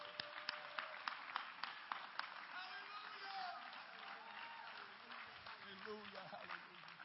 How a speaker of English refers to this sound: Come on, clap your hands.